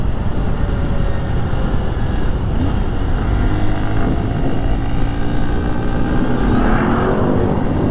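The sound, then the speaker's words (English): A Honda XR150L motorcycle rides along a road as the wind picks up, its engine droning steadily and loud with heavy wind rush, the engine note climbing briefly near the end as it accelerates. “I have more XR150 content coming, but I just wanted to show you guys what I'm using this for on the daily. Show you the roads that I ride on it.”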